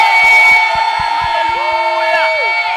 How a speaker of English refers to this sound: Give Jesus a praise and a clap of yeah. Hallelujah. Amen. Give Jesus a praise and a clap of praise.